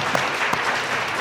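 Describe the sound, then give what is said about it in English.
A burst of audience applause at a talk, given for a half-credit answer about how much power the Earth uses: dense and steady clapping from many hands, fairly loud, lasting about a second with no voices. “Okay, let's have a round of applause for half power.”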